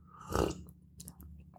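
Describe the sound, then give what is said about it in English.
A wet slurp of a sip of coffee, one short breathy burst of sucking air and liquid, followed by a few soft mouth clicks and a quiet swallow. “I'm gonna take a sip from my coffee.”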